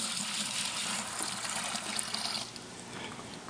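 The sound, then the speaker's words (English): Water pours steadily into a container, a continuous bright splashing rush that eases slightly in level toward the end, with no voices. “I need to add some water.”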